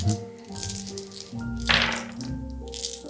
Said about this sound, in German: Also ich würfe jetzt mal 3d20 für die Gerüchte. Um zu schauen, wie gut diese funktioniert haben. Je höher ich würfel, desto besser.